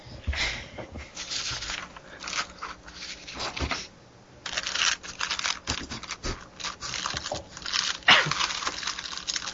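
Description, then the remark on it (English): Crinkly plastic wrapping of a saltine cracker sleeve being handled, a steady stream of sharp, irregular crackles with a brief lull midway, fairly loud and with no voices. “I'm trying to get saltines.”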